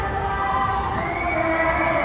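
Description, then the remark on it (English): A large crowd at KCON, a K-pop convention, cheers and screams excitedly, with high-pitched voices rising into a sustained, steady roar throughout, loud and dense with no breaks. “You're hearing all of the excitement happening.”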